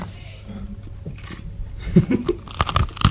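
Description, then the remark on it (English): Crunching of someone biting and chewing crusty bread, a quiet start building into several loud, crackly bites with brief pauses between them. “Do you want to hear the crunch?”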